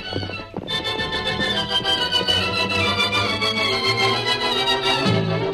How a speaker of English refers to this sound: The Lone Ranger urged the great horse through the night.